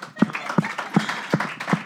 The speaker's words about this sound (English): Yeah, big round of applause for this guy.